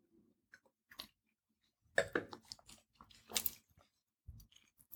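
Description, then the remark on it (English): Someone sips a 2019 Kelleray Auer Pinot Gris wine from Italy: quiet wet mouth clicks, then a few louder slurping, swishing bursts in the middle, trailing off into faint smacks. No one talks. “And she's like, we've already toasted, but let's take one more sip and then I'll unveil what it is.”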